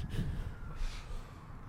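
A dog sniffs right up against the microphone, a few quick, breathy snuffles and puffs of air, fairly loud, with no talking.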